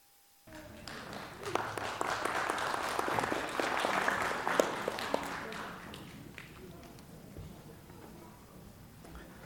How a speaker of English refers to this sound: So yeah, certainly those hand claps are well deserved by our moms.